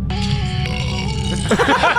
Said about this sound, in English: Oh, for this, go, this is for the same song? I do a burp. Oh, okay. It's like, whoa, but it's me burping. It's great.